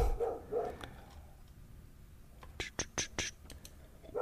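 A dog barks repeatedly in the background, a couple of short yaps followed by a quick cluster of sharp barks, fairly faint.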